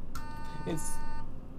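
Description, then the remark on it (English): A door entry buzzer sounds once as somebody buzzes into the station: a steady, harsh electronic buzz lasting about a second over a low background murmur, then cuts off abruptly. “That was somebody buzzing into the station.”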